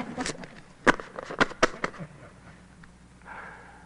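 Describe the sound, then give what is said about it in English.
A deck of playing cards is shuffled during a card trick after a chosen card is slipped back in: a quick run of sharp, papery snaps and clicks at an uneven pace, followed by a softer, brief riffling whir. No one speaks. “Okay, and now that everybody's done, you can slip it back in the deck. Thank you. And I'll shuffle a few times.”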